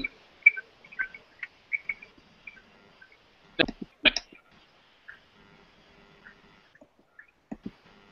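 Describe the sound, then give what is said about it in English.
Garbled, chirpy electronic noise from a bad phone line: scattered short high-pitched chirps and bleeps with a couple of sharper crackling bursts in the middle, fairly quiet overall and no clear voice. “No, it sounds very chirpy.”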